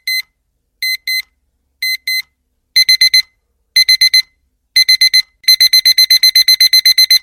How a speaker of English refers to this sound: Yeah, I have this vision of like alarm clocks that he's charmed to go off at a certain time that are really, really obnoxious.